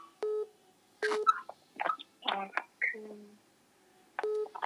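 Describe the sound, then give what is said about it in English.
Short electronic phone keypad beeps sound as the phone is taken off loudspeaker, a tone near the start, another around one second and a third at the end, with muffled voices talking in between. “Take the phone out of the loudspeaker, right?”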